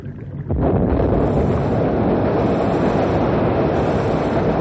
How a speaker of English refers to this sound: We're all set now to blow up the jam. I certainly hope it moves the ice out after all the work you've gone through,